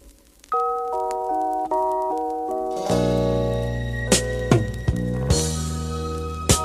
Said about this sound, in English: this song is called … off … self-titled album. And we'll just listen to a little bit of it.